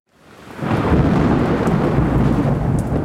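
A deep, sustained rumble of thunder swells up within the first half second and rolls on steadily, loud and broad, with a hiss like rain layered over it. No one speaks.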